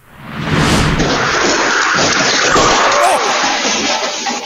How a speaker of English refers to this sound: 20 yards away, a car ran a stop sign. When the car got plowed into, look out,